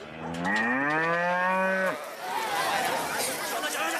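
A single loud, drawn-out cow moo rises and then holds for about a second and a half before cutting off, followed by a few seconds of noisy ambient rustle.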